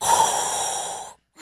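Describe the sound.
A voice imitates heavy breathing through a snorkel: one long, loud, hissing, rasping breath held for about a second, then a short silence before another breath begins.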